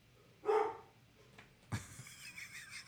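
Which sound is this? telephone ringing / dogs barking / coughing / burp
dogs barking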